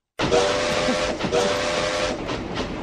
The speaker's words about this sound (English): Nice. It's the only whistle I have.